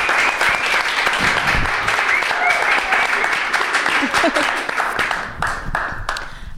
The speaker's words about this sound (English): So I think everyone should give them a round of applause for that.